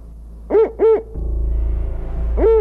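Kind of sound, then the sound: bird, spotted owl hooting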